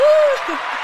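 applause sound effect

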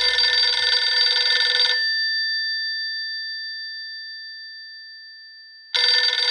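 payphone ringing

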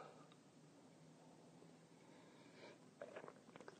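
sipping coffee

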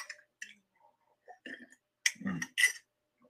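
sipping tea

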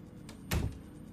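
door being closed

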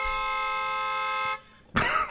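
car horn honking

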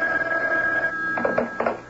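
telephone bell ringing

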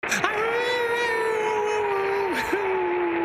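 dog howling

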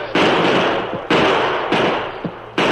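gunfire

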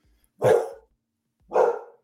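dog barking

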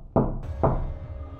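knocking on a door

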